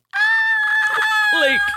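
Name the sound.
voice imitating a scream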